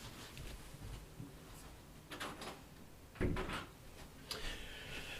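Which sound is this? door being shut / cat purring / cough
door being shut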